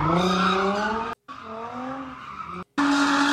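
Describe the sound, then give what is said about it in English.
Loud sounds of expensive cars being driven and wrecked: tires squeal and an engine whines in sustained, shifting tones, broken into three abrupt bursts separated by brief silences. No one speaks. “Let's go back to fucking up expensive cars.”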